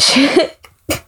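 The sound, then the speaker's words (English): A loud sneeze bursts out with a breathy, voiced blast, followed a moment later by a shorter, softer second burst. “Bless you.”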